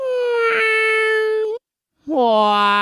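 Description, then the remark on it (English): Two drawn-out cat meows played in reverse, loud, each a steady whiny tone that ends abruptly, separated by a brief gap of silence. “we're doing a kitty cat meow here in round one. You're going to hear it two times backward, and then we'll see what you sound like.”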